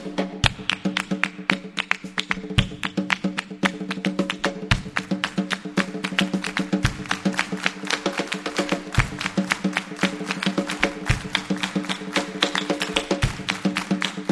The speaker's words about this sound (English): And one of the things we like to ask our friends to do in this song is this clapping part. It's kind of complex, but I think you guys can handle it. It goes like this.